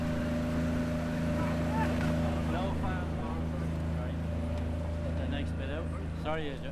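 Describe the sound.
A boat engine drones steadily and loudly throughout, a constant low mechanical hum, while indistinct voices come and go faintly over it; the boat is following the men in a swimming race.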